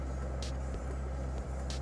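Steady low engine rumble and road noise from inside a moving vehicle driving home, with faint passing traffic and a couple of brief hissing bursts, continuous and fairly loud, no talking.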